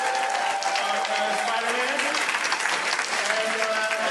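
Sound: audience applause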